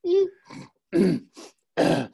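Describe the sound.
A person deliberately imitates vocal tics, making a series of short grunts and snorting sniffs in quick bursts with brief pauses between them, clear.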